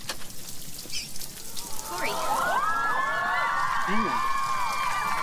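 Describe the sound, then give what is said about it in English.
A steady hiss of falling rain as a woman stands in the rain at a door that has just been opened, soon joined and largely covered by an audience whooping and cheering with rising and falling voices. “because when she comes back and he opens that door and she's standing there in the rain, I think I was with the audience like screaming, yes!”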